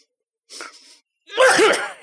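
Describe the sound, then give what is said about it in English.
A single exaggerated, theatrical fake sneeze performed by a person: a breathy wind-up intake followed by a loud, drawn-out, voiced explosive burst, isolated with no talking. “Well, now you've heard of the coconut sneeze, which is”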